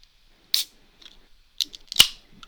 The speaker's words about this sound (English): Yes, I'm popping open a bunny with a chainsaw. One of my characteristic beers of this season, for obvious reasons.